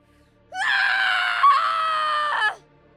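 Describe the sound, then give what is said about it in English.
A young man lets out one loud, sustained scream of rage, strained, lasting about two seconds before cutting off abruptly, with no other sounds around it; he screams while drawing a sword from its scabbard and running at a masked salesman. “Link screamed, sliding the sword from his scabbard and running at the masked salesman”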